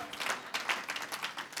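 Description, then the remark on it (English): A group of people clapping their hands together in steady, overlapping applause, continuous, with no one speaking over it. “Oh, give him a hand clap today.”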